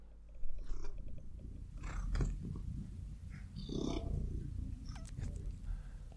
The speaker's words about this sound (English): Here's Puppy, My Cat's Purr.